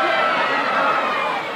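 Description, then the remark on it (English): A studio audience of kids in the studio of the live show Wey Hey, It's Saturday cheers loudly in a steady, dense wash of high-pitched shouts and whoops that holds for about a second and a half with no talking over it. “And we've got a great bunch of kids here. Who are obviously prepared to cheer at anything I say.”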